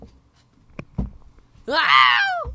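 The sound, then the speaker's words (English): A man's voice lets out a loud, strained mock scream lasting under a second, its pitch rising then sliding down, in imitation of the Wilhelm scream, after a couple of soft thumps. “Just as the Wilhelm scream. That's what I was trying to mimic, but like I'm too R2-D2-y.”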